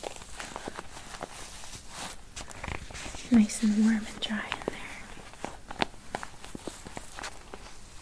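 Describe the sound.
A mochichi little monkey toy's plastic ladybug raincoat crinkles in irregular, crisp little crackles throughout, while someone speaks softly, almost in a whisper, partway through.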